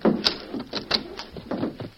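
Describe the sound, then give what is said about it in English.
A back door is unlocked and worked open: a quick series of sharp metallic clicks and rattles, like a lock turning and a latch giving, with scraping and bumping between them. “Get that back door unlocked, quick.”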